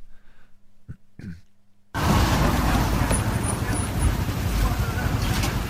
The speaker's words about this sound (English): So police squad car rolling up on a gas station. Uh-oh. Cops yelling at some guy. Guns drawn.